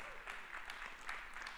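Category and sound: crowd, audience hand clapping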